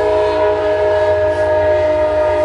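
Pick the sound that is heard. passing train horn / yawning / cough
passing train horn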